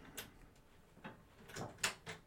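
A series of faint clicks and clunks, like a latch turning and a door being handled and pulled open, spread over a couple of seconds with no voices.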